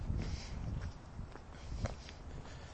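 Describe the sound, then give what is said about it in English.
Steady footsteps crunch along a gritty, salted pavement at an even walking pace on a very cold day with snow all around, each step a short scrape over a low background rumble of outdoor noise. “The pavements are clear, and you get used to crunching around in the salt. I wonder if you can hear my footsteps.”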